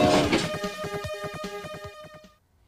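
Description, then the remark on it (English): A short train sound effect introducing the Amiga News segment: a steady, whistle-like tone rides over a quick, rhythmic chugging clatter, fairly loud, then cuts off abruptly after about two seconds. No voices. “Amiga News. Gamble Train.”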